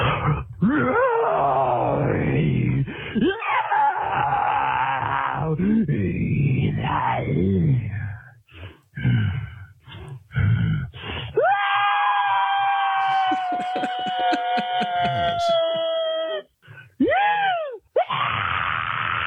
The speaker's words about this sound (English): We got a scream on the line right now? We got two sitting in the inbox. Let's crack one open. All right. This is the first scream mail for tonight.